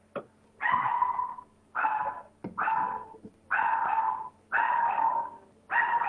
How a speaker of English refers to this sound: Well, Little Bit, I think, is barking. Oh, okay. We'll put the phone to Little Bit first.